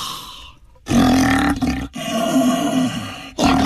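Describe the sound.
A person imitates a lion's roar through an empty paper towel roll as part of a roar challenge, producing three loud, resonant, hollow-sounding roaring bursts separated by brief pauses.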